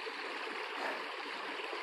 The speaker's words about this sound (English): I can hear the running water. I have the fjord. Or forge, fjord. I'm going to slip if I step on that rock.